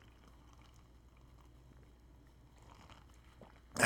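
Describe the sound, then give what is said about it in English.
Someone takes a quiet sip of a drink, with soft liquid slurping and swallowing noises, ending in a sudden louder clunk. No one speaks. “So I got to take a sip here.”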